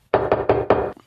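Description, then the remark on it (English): Four loud knocks on a door land in quick succession, each hollow thud ringing briefly into the next before falling silent. No one speaks. “There's knocks at the door.”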